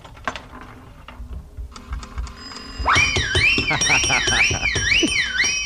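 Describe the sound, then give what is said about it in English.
A nickel slot machine hits the jackpot: a few seconds of rapid mechanical clicking and whirring give way to a loud, steadily warbling alarm tone that rises and falls in pitch and keeps ringing. “Oh, it's the first time I ever hit the jackpot.”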